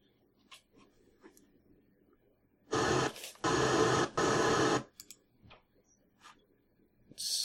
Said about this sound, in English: What was that? I'm listening to the 23rd episode. Kind of sounded like a bunch of static. Yeah, that's how it started out. See, we did that intentionally.